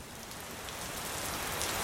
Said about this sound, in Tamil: மழை பருவ காலங்களில் மேகங்கள் வானத்தை இருட்டடித்தன. பருவமழை மேகங்கள் ஒரு தாள மழையில் இடியுடன் கூடின.